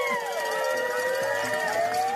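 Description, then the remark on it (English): Police sirens wail continuously over the murmur of a busy protest crowd, their sliding tones overlapping while the background chatter and bustle stay steady throughout. “There's some real sirens in there from the police.”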